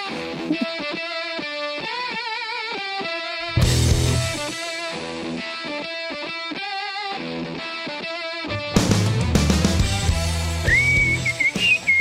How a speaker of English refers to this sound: We are just working on our whistles around here at the Element, up here in the lounge.